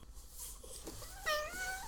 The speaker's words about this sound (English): Stay tuned for some cat noises.